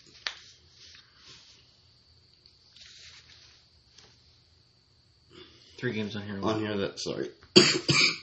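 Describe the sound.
A man coughs in a few rough, throaty bursts close to the mic, with soft breathy sounds and a brief voiced stretch between the coughs.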